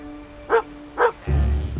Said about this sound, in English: A young shepherd, grasping his staff and accompanied by his barking, yipping dog, glanced away from his flock and looked out at the water.